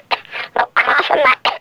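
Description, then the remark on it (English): A series of short, raspy coughs: two quick hacks, a longer rough throaty cough-and-clear, then one more sharp cough, fairly loud with no talking over them. “I got this little cough in my...”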